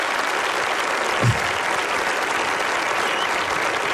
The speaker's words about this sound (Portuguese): Palmas para ele.